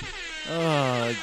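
A loud, brassy air horn sound effect from a soundboard blasts for under a second, its stacked harmonic tones holding steady before cutting off, with a faint background hiss around it.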